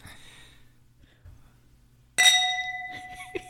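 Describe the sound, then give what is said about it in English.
Glasses clink together in a toast, one bright strike that rings on with a clear, lingering chime, followed by a couple of faint small taps against a quiet background. “Cheers.”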